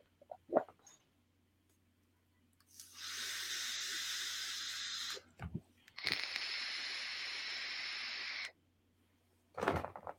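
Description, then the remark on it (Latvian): Two long, steady hissing exhales of vape vapor, each lasting a couple of seconds, with a few soft clicks and thumps around them and no talking. “So, nu ko, nu tā vēl uz pāris tvaikiem gulēt. Davai, pa pāris tvaikiem.”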